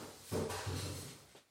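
A few dull knocks on a door, two close together and then a softer one after a pause, with a hollow low resonance lingering between them and no voices.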